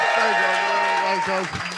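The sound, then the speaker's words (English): A live audience claps loudly and steadily for Ray Badran, with a sustained vocal cheer or whoop riding over the applause before it tapers slightly at the end. “Ray Badran, everyone. Give it up.”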